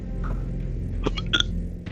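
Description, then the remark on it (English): A couple of short, croaky burps, quick gulping bursts in a row over a steady low background hum, with no talking. “Hey, just like to point out that's not me burping.”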